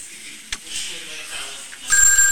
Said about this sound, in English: Now they're getting a phone call.